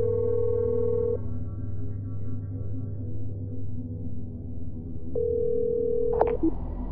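A phone rings on the line: two steady electronic ring tones about four seconds apart over a low hum, then a click as the call connects to voicemail. No one speaks.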